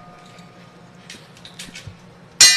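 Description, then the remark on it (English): A single bright bell strike rings out loudly near the end, its metallic tone sustaining, preceded by a couple of seconds of faint clicks and quiet background noise. “That damn bell's weak. Do that again, please.”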